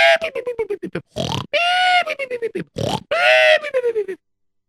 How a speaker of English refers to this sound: With napping like that, snoring so loud, how can I sleep?